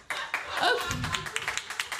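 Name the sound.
round of applause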